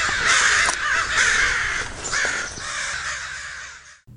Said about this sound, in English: Remain calm. Do not move, or you will certainly become prey to the avian menace that is currently infesting your neighborhood. Remain still. Remain calm.